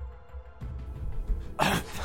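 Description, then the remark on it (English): A person imitates a game character's short fit of coughing: a couple of rough, throaty bursts followed by one louder, harsher cough near the end. “Charles starts coughing.”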